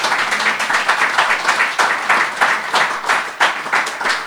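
A crowd claps steadily, a dense, sustained patter of many hands with a bright, hissy texture and small surges in loudness, with no voices over it.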